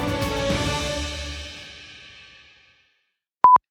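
A phone ring comes through a computer as a bright, layered chime that fades away over a couple of seconds, followed after a brief silence by one short, steady electronic beep.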